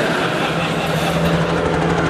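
A private helicopter's engine drones steadily, a constant, even roar with a low hum running through it and no break in loudness, flying back to a 55th-story penthouse in Toronto. No voices are heard.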